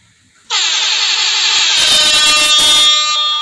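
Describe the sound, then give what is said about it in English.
After a brief quiet moment, a loud alarm sound effect blares in as one continuous, harsh, horn-like tone and holds steady until the end, with no talking. “Let me sound that alarm, man. Let me sound it off.”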